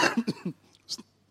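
A series of short coughs and throat-clearing bursts, several quick hacks in a row, then a pause and one final cough, with no talking.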